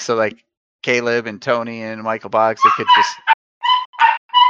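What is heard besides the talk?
dog barking and whimpering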